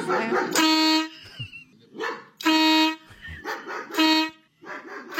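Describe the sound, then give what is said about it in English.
A neighbor's dog barks loudly and insistently, letting out a string of about four long, ringing barks with short pauses between them and no break in the barking. “So my neighbor got a dog, and the damn thing barks nonstop.”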